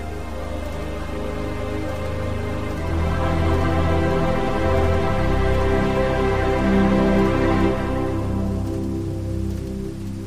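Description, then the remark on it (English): Heavy rain pours steadily in New York while deep rolling thunder swells underneath, growing louder around the middle and easing toward the end. Nobody speaks. “That was epic thunder, by the way.”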